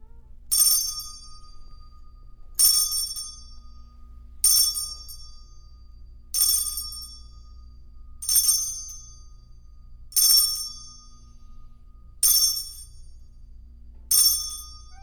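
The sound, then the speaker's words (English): A bright metallic chime rings eight times at a steady pace, roughly every two seconds, each strike clear before fading quickly, with a faint low hum underneath and no talking. “So I think now I'm up with the chime.”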